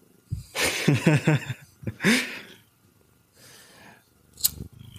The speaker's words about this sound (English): I can hear Mittens purring.